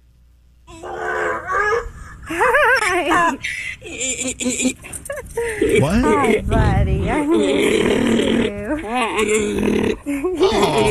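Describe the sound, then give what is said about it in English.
A donkey brays loudly in long, wavering cries that rise and fall in pitch, repeating several times, while a person speaks a few short words between the calls. “A happy donkey. I love a happy donkey.”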